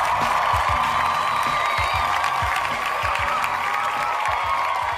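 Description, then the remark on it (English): A crowd cheer sound effect played from a soundboard: a sustained cheer with applause, a dense steady roar of many voices and clapping holding at a constant loudness for about five seconds, with scattered whoops rising above it. “Let me bring in the crowd real quick.”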